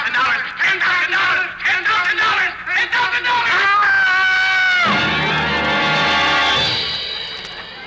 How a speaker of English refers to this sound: Did that scream frighten you, Brutus? No, Caesar.